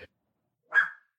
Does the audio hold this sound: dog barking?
yes